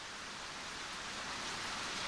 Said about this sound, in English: The rain pelts down into the black earth on the track. It drenches the fur of the mice and the big sad squirrel. It pushes the soil down and away from objects just under the soil surface, revealing them.